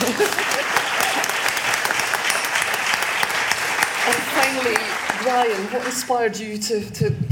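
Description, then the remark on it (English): An audience claps steadily in a dense, continuous patter of applause, and voices begin to come through over the clapping in the last few seconds. “Round of applause.”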